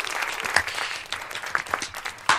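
A short round of applause from a small group, dense overlapping claps with a few sharper, louder hand slaps standing out, steady and fairly close for a couple of seconds.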